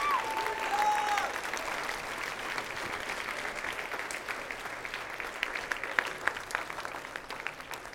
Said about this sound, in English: In the mighty name of Jesus, let's give God a clap offering and a shout of praise.